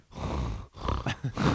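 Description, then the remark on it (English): Loud, heavy breathing blown straight into a microphone: three rough, gusty exhales with a rumbling, snort-like grit, separated by brief pauses, with no talking. “I'm powerfully breathing into the mic.”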